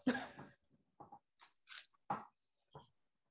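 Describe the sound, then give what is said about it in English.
Chewing of a Reese's peanut butter cup: a handful of soft, sticky munching bursts in an uneven rhythm, separated by brief pauses, with no talking. “I was chewing one of my Reese's cups.”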